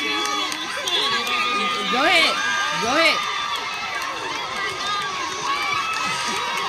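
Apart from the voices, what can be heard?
crowd cheering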